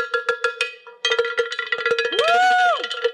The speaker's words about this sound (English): He hit it really hard. I'd love to. You got to play that cowbell.